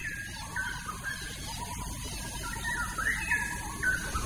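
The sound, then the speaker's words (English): A straw-headed bulbul's bubbling, melodious calls rise in short warbling phrases over a steady bed of cricket buzz and other morning birdsong, in greenery near condos and a busy road, with no one speaking. “Straw-headed bobo was calling again.”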